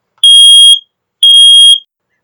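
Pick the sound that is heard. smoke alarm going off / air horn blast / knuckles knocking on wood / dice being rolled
smoke alarm going off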